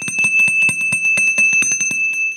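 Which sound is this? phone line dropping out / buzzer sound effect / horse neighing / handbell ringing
handbell ringing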